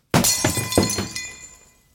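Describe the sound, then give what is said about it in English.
A drinking glass is thrown and smashes with a sharp crash, followed by a few bright tinkling bounces of shards that ring out and fade over about two seconds. “Okay, well, I just broke my glass. I didn't have a rock, so I just threw my glass.”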